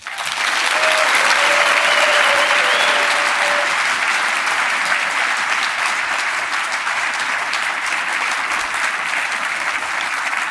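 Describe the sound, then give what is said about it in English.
A large audience applauds steadily for about ten seconds, a dense, loud wash of clapping that holds even throughout, with a faint whistle-like tone rising briefly early on, giving a round of applause for the entire BiggerPockets team. “So before we go further, I'd like everybody here to give a rousing round of applause for the entire Bigger Pockets team.”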